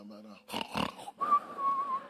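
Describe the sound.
A voice imitates loud snoring: a short hum, then two harsh, rasping snorts followed by a long, steady whistling exhale, fairly loud.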